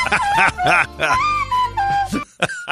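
The opening melody of a pop song played on a recorder: breathy, whistle-like notes held and stepping down in pitch, with other voice-like sounds mixed in around them.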